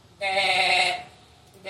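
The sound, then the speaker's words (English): A person imitates a sheep with a single loud, nasal bleat lasting under a second, followed by quiet. “I'm a little red-headed sheep.”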